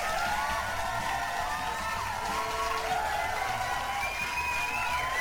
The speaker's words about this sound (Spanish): Un pinche aplauso.